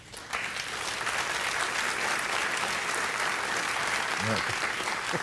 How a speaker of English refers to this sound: Not quite the applause Apple got.